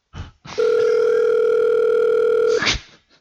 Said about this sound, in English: You've got him on quick dial. Speed dial. What's his name? It's ringing.